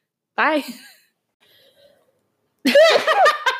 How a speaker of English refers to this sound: So just wanted to prepare you. I'm about to sneeze. So sorry. It's really loud, but.